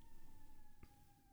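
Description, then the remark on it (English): An emergency vehicle siren wails outside, a steady high tone drifting slightly lower as it passes, with a brief knock partway through and no one talking. “So let's just hold for siren.”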